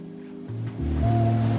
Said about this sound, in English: Oh, this sounds like water. Dude, you hear it in the background? I hear water.